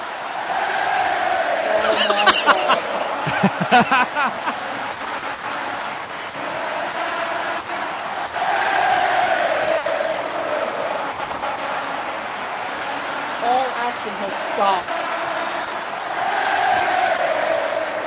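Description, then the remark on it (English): A large arena crowd at a wrestling event roars and chants in unison as Brock Lesnar is eliminated by Bryan Danielson, a dense sustained wall of voices with rhythmic swells and occasional sharper shouts rising above the din. “The crowd now break into.”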